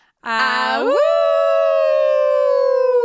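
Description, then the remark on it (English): A single loud howled "awoo": it starts on a low note, swoops sharply upward, then holds a steady, bright, high tone for about two seconds with no other sounds. “I know we never talk after the awoo.”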